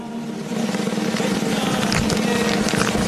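drum roll

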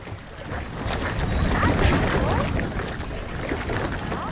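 strong wind

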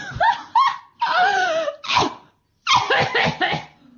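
coughing

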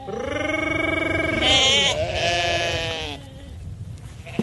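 sheep bleating

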